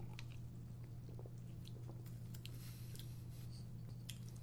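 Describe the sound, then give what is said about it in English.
Wet mouth sounds of someone sipping a fizzy soda, with small crackling, popping bits scattered over a steady low hum and no talking. “is already taking the sip.”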